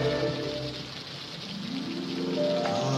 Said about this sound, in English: Sorry, chaps, just I've got a leak above my head somewhere.